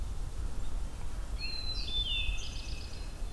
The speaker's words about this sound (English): And pine warbler trilling.